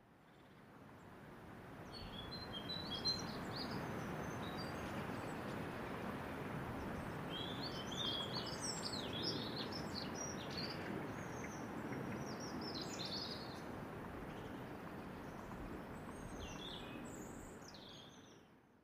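Dartmoor rainforest ambience: a steady, full wash of rushing background noise with scattered high bird chirps and short song phrases throughout, fading in and out gently at the edges.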